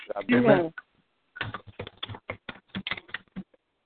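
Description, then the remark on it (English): Rapid, irregular clicking of keys being typed on a keyboard during a group call, fairly loud, following a brief burst of voice at the start. “Whoever's typing, can you mute?”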